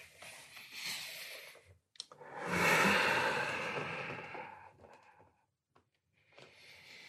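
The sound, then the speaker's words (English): Slow, deep breaths, long airy swells of inhale and exhale with short pauses between them, and no talking. “Hear the sound of your breath, my breath.”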